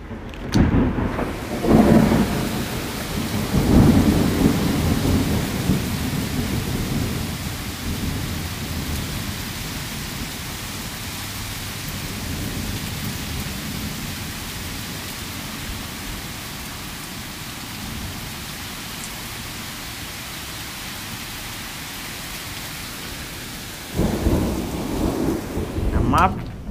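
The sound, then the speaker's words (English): A heavy thunderstorm with steady rain hissing throughout, deep thunder rumbling loudly near the start and rolling again toward the end, with no one speaking. “My only prayer is that the lightning don't hit that much with a power go out.”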